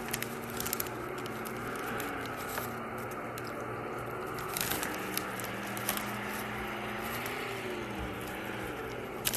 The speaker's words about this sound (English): Listen to that powerful engine. Engine working my car through.